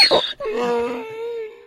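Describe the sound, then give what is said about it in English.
A person imitates a frightened donkey: a sharp, squeaky broken onset, then a long wavering, high-pitched moan that slowly fades, with no words. “That was another version that of the donkey. That was a scared donkey.”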